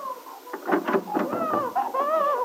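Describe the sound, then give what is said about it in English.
A hungry baby boy on a terrace, waking from his nap, cries loudly in a string of strained, high-pitched wails that rise and fall, the bursts running together with barely a pause and no talking over them. “My goodness, listen to the little monkey. Nothing wrong with his lungs.”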